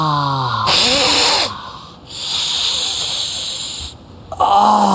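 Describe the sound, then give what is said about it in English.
A person imitates an angry cat, reacting to Kevin Spacey appearing on screen in Baby Driver, with several loud, breathy hisses in bursts, separated by short voiced snarls and gasps, with no other talking. “As soon as he came on the screen, I was like a cat.”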